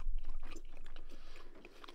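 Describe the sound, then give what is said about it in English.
Crunchy bites and chewing on the crisp, thin crust edge of a St. Louis style pizza, a steady run of small crackling crunches lasting a couple of seconds with no talking. “We should do it at the same time. Wait, should we cheers it? Eat an edge.”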